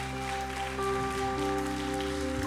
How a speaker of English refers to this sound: Come on, let's give a proper round of applause there to Chris.